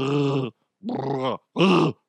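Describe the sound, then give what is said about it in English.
A person imitates a Chewbacca growl in three drawn-out, throaty bursts with short pauses between them, loud and rough, with no other talk. “Or making Chewbacca sounds at random times during the day at work.”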